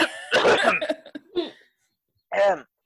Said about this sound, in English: coughs